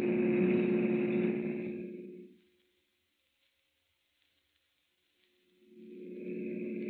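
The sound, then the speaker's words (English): A police officer's car engine roars steadily as it speeds toward a bridge, then fades away into near silence for a few seconds before swelling back up loud again. No one speaks. “Oh, officer, can't you go faster? I'm driving as fast as I can”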